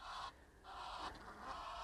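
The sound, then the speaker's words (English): Two Egyptian geese flying overhead give harsh, raspy honks in three quick bursts with short gaps, with no one speaking. “Oh, I don't know if you can catch that. Two Egyptian geese flying over.”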